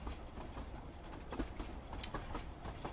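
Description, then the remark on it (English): A steady, low rumble of a moving train carriage fills the background, continuous and fairly quiet, with occasional faint rattles and clicks over the constant drone. “Yes, I'm on the train, it's just running a couple of minutes late.”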